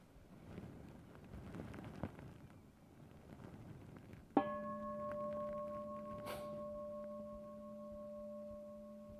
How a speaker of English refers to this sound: So let's just sit for another minute as we listen to the gong, being present.